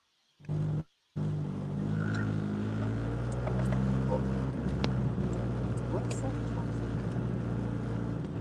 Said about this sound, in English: Sound like he on a motorcycle.